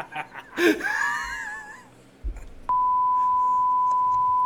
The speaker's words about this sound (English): Why you always beep me?